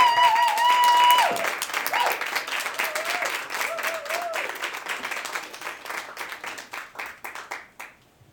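A loud round of applause with dense clapping and whoops from an open mic comedy audience welcoming the evening's first open mic performer, including a high whistle at the start, gradually thinning into scattered claps before fading out.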